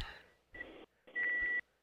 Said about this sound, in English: At least we hear the car backing up.